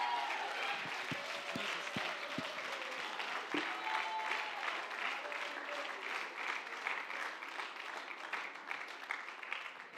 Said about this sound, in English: Everybody clap your hands and give God a shout of praise before we move on here today.